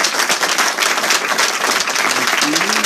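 A crowd applauds steadily, dense overlapping claps forming a loud, even wash of sound for about three seconds, with faint voices and a few cheers rising near the end.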